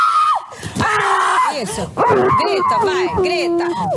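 A person screams loudly in a series of high, wavering yelps and cries, rising and falling in pitch, continuous with only brief breaks.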